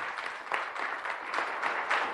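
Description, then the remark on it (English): An audience at an ACB convention breaks into steady applause for the organization's second vice president, a dense, continuous wash of many hands clapping at once, holding at a fairly even loudness throughout with no voices standing out. “He is the second vice president of ACB, and I just want you guys to give him a great round of applause.”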